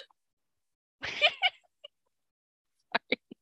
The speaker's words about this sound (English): Hiccup.